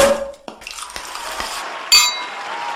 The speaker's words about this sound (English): I'm going to give you the loudest champagne cork pop I can find.